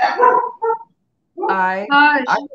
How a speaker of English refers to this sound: Hush. Sorry, it's my dogs.